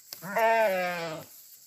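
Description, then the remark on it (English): A single drawn-out bleat from a gray and black Romanov sheep, one of a small flock on a farm in Randolph County, West Virginia. It is fairly loud and lasts about a second, with a wavering, nasal tone and no other sounds around it. “It's a good thing, too, because within a year of buying a farm in Randolph County, West Virginia, Margaret and her husband suddenly became the owners of a small flock of gray and black Romanoff sheep.”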